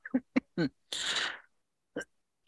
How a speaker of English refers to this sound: Excuse me, I got a cough here.